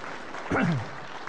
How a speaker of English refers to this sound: Yes, give God a round of applause.